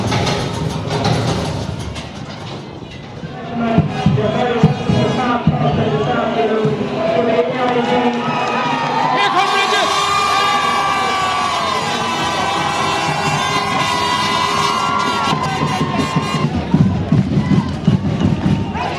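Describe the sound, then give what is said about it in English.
A large crowd at a Leinster Club football final at Park Tolchin in Navan roars and cheers continuously, a dense wash of many voices with shouts rising over it, loud throughout without pause. “Go to the Leinster Club football final. A big crowd, I'm sure, at Park Tolchin in Navan.”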